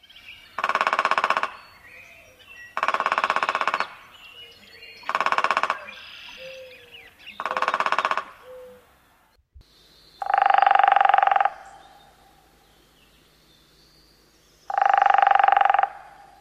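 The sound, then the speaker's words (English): Woodpecker drumming: four short, evenly spaced downy woodpecker drum rolls, then a change to two longer, louder, faster hairy woodpecker rolls, a species averaging 25 beats per second, separated by a gap, with no talking. “Now let's compare those really quick. First the downy, and then the hairy.”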